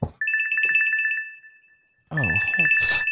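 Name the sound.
phone ringing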